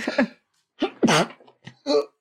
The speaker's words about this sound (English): He's still sneezing. Oh my gosh.